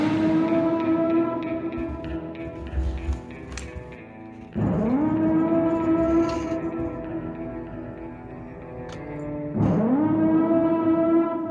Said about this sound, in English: hey, you hear the ambulance right there.